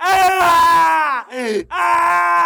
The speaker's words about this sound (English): He's just screaming.